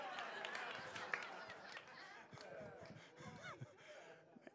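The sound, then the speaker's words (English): An audience claps in a dense, steady patter mixed with murmuring and a few gasps and snickers from the crowd, at moderate volume and tapering off near the end. “You guys clapped a little too hard for that one.”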